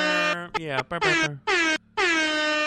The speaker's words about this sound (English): And then Air Horn Club Sample.